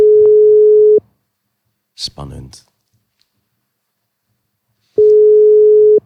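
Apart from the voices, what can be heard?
phone call ringing tone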